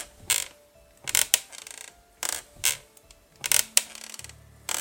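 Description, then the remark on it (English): Wooden creaks repeat in a loose back-and-forth rhythm, about six strained, scraping groans with brief quiet gaps between them, as a woman rocks a chair back and forth. No one speaks. “They were in perfect condition, with none of them bent and broken in the way I had seen minutes ago, but the rocking noise picked up again.”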